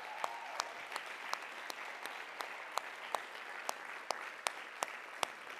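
A church audience applauds its worship coordinator steadily, a dense wash of clapping with sharper individual claps popping out at irregular moments, sustained at an even moderate level without any voices.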